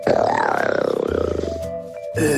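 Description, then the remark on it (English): A person imitates a tiger's roar: one loud, growling vocal roar that rumbles and wavers for about a second and a half, then trails off into a short breathy pause. “Here is my impression of Carol Baskin's tiger.”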